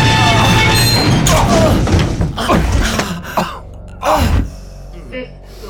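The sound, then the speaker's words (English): A loud, rumbling crash of an elevator going down too fast: dense grinding clatter and several heavy jolting bangs as it shudders to a halt, with gasping voices mixed in as the noise tapers off. “The elevator shook to a halt as the red emergency light activated, bathing the elevator in crimson.”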